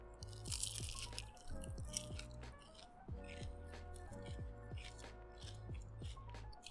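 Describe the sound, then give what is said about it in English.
Loud crunching as crispy fried food is bitten and chewed, with repeated crackly bursts in an uneven rhythm over a low steady hum, no talking. “That crunch though.”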